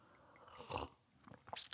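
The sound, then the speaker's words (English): Quiet mouth noises of someone drinking: a wet slurp, then a few short gulping and smacking clicks, with no talking. “Sorry about the drinking on the.”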